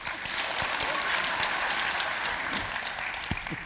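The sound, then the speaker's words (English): An audience claps steadily for a few seconds to vote 'false' in a true-or-false quiz, a dense wash of hand claps at a fairly even loudness with a few sharper individual claps standing out. “Applause for true or applause for false.”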